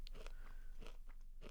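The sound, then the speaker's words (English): Crisp crunching of a Cheez-It cheese cracker being bitten and chewed, several dry crackly bursts in quick succession with no talking. “So I'm going to do a crunch test, and everyone at the table tell me.”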